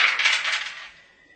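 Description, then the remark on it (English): Two stress dice clatter and tumble across a hard table in a quick rattling burst that fades as they settle, fairly loud, with no voices. “Roll. Let's call it 2 stress dice.”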